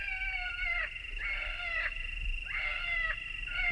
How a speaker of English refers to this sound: And from their pickup truck comes the recorded call of a wounded rabbit.